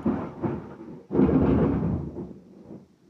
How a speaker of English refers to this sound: We have a rainstorm, a Florida late afternoon rainstorm. With thunder and lightning. There it is.